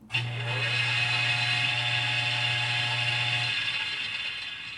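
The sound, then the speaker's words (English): An electric blender is switched on during a demonstration: its motor whirs steadily and loudly with a low, even hum beneath a bright grinding buzz, then cuts off after a few seconds and the noise trails away. “I mean, just to give you an example, I mean, for instance, a frog in a blender is not a test for my theory. I'm going to turn the current on so I add energy to the system.”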